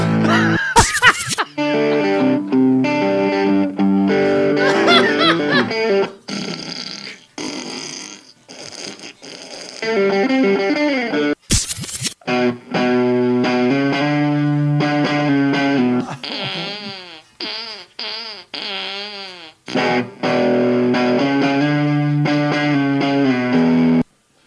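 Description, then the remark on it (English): A medley of songs played through a fart effects pedal: a run of buzzy, distorted fart-like tones with wobbling pitch bends, sputters and brief gaps between bursts, loud throughout with a couple of sharp noisy blasts. “So that that's the fart pedal medley.”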